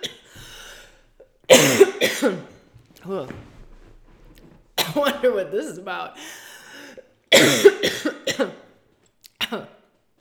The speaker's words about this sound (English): Oh no, I might go into one of my coughing fits.